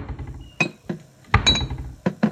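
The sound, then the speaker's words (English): Several bright glass clinks ring out as a cold glass of chocolate milk is poured, about six sharp taps spaced unevenly with brief ringing tones. No one speaks. “After pouring a cold glass of chocolate milk for her kids,”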